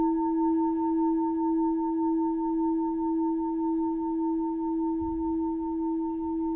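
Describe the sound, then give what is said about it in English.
A bell's resonant ring hangs in the air as a smooth, steady hum of a few pure tones, one low and strong with fainter higher overtones, sustaining for several seconds without any voices. “As you hear the sound of the bell fade, allow your body to settle.”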